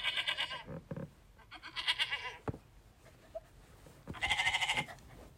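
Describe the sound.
A person imitates a screaming goat with three loud, wavering bleats, each about a second long and separated by short pauses, with no talking.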